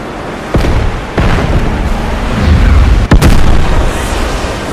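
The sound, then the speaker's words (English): A massive building explosion in Final Fantasy VII, in a city at night: several sharp blasts at uneven intervals, each followed by a deep, sustained roar of rumbling debris. Loud throughout, with no voices. “The building blows apart.”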